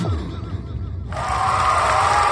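A crowd roars with cheering and applause. The dense, steady wash of noise swells suddenly about halfway through and stays loud to the end, with no voices standing out.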